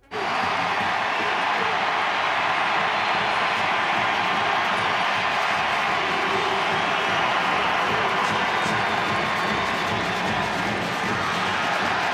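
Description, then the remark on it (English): A large stadium crowd at a Nashville SC soccer match against New York City FC roars and cheers continuously as MVP Hany Mukhtar takes to the pitch in the 75th minute, a dense, loud wall of voices with scattered whoops rising above the steady din throughout. “And in the 75th minute of the game, the team's MVP finally took to the pitch, and this is how the crowd reacted.”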